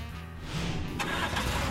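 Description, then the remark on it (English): A police car engine turns over and catches, then revs up with a throaty rumble and a rush of noise as the vehicle pulls away, fairly loud, driving to a pond in the suburbs. “got into the police car, and they drove to the pond in the suburbs where Mr. Wolf had been attacked”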